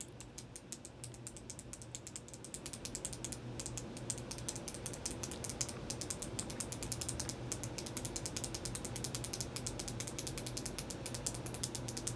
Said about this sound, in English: He's clicking his pen. He not caring.